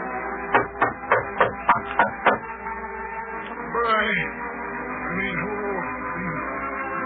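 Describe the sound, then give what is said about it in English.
Seven sharp knocks on the mayor's door in a quick, steady rhythm, followed by a stretch of indistinct voices and background sound. “Well, go ahead and knock there”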